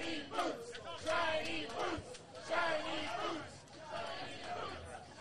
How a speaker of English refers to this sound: Crowd giving a big shout-out to the shiny boots of Mike Orlando.